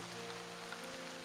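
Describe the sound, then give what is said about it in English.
Heavy rain pours down in a steady, unbroken hiss, heard at a fairly low level with a faint low hum beneath it and no voices. “You're dealing with like a crap ton of rain.”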